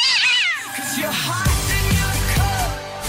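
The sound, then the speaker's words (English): Several cats meow loudly and insistently, their overlapping wails rising and falling in quick succession, with no talking. “I can't control these cats. They're a huge problem.”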